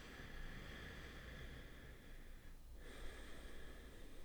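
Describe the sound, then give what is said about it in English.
A single slow, deep breath: a long airy inhale, a brief pause, then a long exhale. It is fairly soft, with no talking. “Take a breath.”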